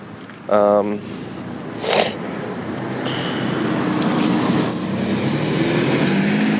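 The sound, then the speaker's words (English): Cars rush past from every direction on a busy street as someone tries to cross, a steady roar of traffic that swells and fades, with a brief horn-like tone near the start. “There's fucking cars coming from every which way.”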